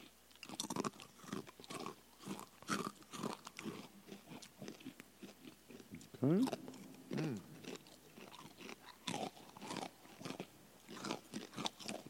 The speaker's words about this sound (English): Yeah, Crunching into the microphone, a brand new segment. Wow.